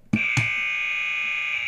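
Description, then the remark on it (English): A game show buzzer, pressed by a contestant, sounds loudly: two quick clicks open into a steady, sustained electronic buzz that holds at an even, harsh pitch to the end, alone with no talking. “And will you please buzz your buzzer?”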